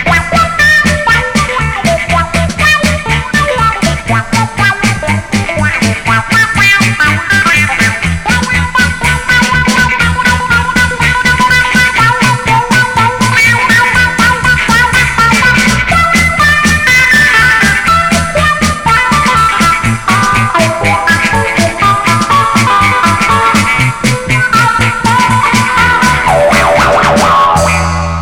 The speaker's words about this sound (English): By rocking the foot back and forth, we get the wah-wah effect. The same applies for chords. The wah-wah pedal lets you go from mellow rhythm to sharp lead. Quickly, and all without dropping a beat. Now let's listen to the wah-wah pedal in action.